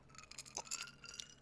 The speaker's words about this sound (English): On this particular episode, I'm sipping on a glass of Honey Jack.